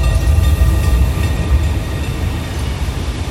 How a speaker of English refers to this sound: train rolls into the camp at Auschwitz, and a man is there to greet it.